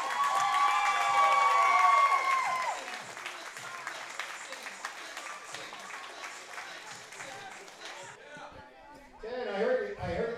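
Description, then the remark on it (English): An audience applauds and cheers loudly, with high whoops and whistles at the start, then steady dense clapping that slowly thins; a voice breaks in near the end. “All right, everybody, one more round of applause.”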